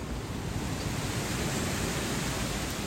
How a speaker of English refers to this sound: It's very, very windy, but it is what it is, my friends. Documenting our morning walk. I guess it's like 5th of December or something. I don't even know. 6th. The wind in the trees.